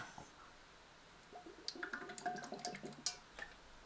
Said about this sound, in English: Excuse me, get my slug of water there. Stay hydrated. Always.